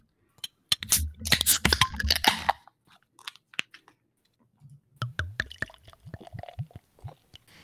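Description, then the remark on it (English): Beer being poured: a dense crackling rush for a couple of seconds, a few scattered drips, then a bubbly, fizzing trickle with irregular glugs. No one speaks. “I like that pour over there, Rigsby. Yeah, I hear that pour sound.”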